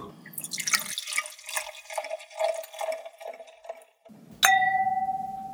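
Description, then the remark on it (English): Wine glugs and splashes steadily into a glass for about four seconds, then a single bright glass clink rings out and slowly fades. No one speaks. “Everybody fill up their wine glasses and we'll be right back.”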